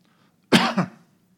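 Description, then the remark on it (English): A single harsh cough erupts abruptly with a brief second push at its tail, then quiet returns. No talking accompanies it. “I did not have a cough until I woke up this morning.”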